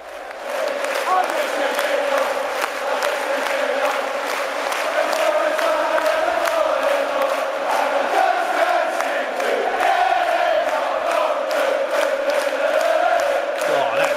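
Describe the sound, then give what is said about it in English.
A large crowd of Glasgow Celtic football supporters sings a rhythmic chant in unison, the massed voices holding a steady melodic line at a loud, constant level for the whole stretch. “Why can't we sing songs like that? Get the crowd in like that.”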